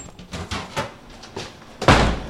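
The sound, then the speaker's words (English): A laboratory door is handled: a few soft clunks and rattles, then it shuts with one loud, firm thud near the end. Nobody speaks. “Dr. Dorothy Roof, the lab supervisor, greets us at the door and shows us around.”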